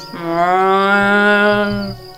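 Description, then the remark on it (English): A cow lets out a single long, steady moo that holds its pitch for nearly two seconds. It's loud, with no talking. “Okay, as you watch, the cow chews away.”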